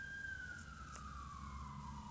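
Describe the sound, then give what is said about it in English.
A single emergency vehicle siren wails steadily, its tone gliding slowly downward over a low rumbling background, with no one speaking. “What kind of siren do you think that is?”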